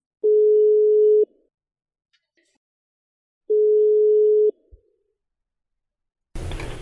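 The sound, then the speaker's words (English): A telephone dial tone before a call from the FT in London to Reykjavik connects, sounding as two steady, mid-pitched one-second beeps separated by a long pause, clear, followed by a brief click and a burst of line noise at the end. “So here's the phone call I had with him.”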